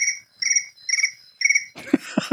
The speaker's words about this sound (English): There we go. Crickets. That's what we get, crickets. Crickets, crickets. That's the audience right there.